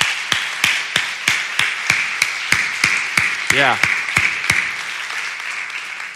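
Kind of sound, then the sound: crowd, audience applause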